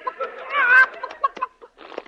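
A chicken clucks: a few short clucks, a longer warbling squawk, then a quick run of choppy, irregular clucks trailing off, with no one talking.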